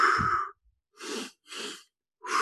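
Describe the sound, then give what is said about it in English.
In a breathing exercise for quick energy, two quick breaths are drawn in through the nose, a short pause between them, then a long breathy exhale through the mouth begins, following an earlier breath out at the start. No talking. “Breathe in twice by nose and long breathe out by mouth.”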